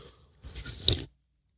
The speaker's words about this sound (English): That sip was for you